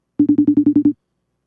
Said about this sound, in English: She said FaceTime. I ain't answering that. She FaceTimed me, so...